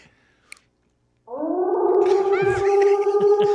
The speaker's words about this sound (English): So I hit this on Spotify and turn the speaker way up. That's supposed to be Bigfoot?